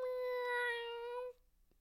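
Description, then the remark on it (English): A single drawn-out cat meow, steady and fairly loud, holding for over a second before cutting off into near silence. No one speaks. “It's checking me out. It's seeing if I'm going to die soon to eat my face off.”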